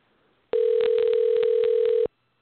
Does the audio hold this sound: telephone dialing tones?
yes